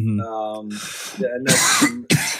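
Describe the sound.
Three harsh coughs burst out in quick succession, each a rough, breathy explosion, preceded by a short voiced hum or throat sound.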